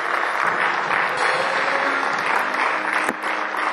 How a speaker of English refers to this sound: Clap for Jesus Christ.